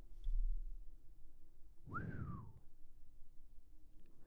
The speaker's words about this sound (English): Wow, that wind is really blowing, isn't it? Yeah, it is. It's whistling.